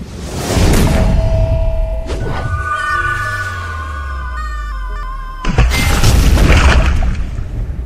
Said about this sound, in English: Lightning cracked over the bay